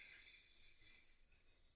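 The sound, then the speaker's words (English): A person makes a steady, breathy snake-like hiss, held for nearly two seconds with a brief dip near the end, moderately quiet, with no talking. “I'm a snake.”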